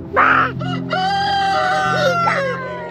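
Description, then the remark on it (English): A rooster crows loudly in a long, drawn-out call while other chickens cluck and squawk around it outside a house, with a steady low hum underneath. “I am out here with the chickens to escape the chaos inside my house.”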